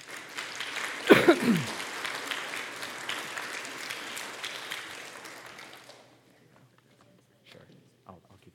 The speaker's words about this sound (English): Because we have some gifts for you guys, and we can applaud for this.